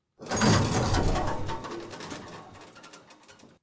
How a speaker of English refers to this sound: Two-stage security. The doors respond to the key. The lock responds to my blood.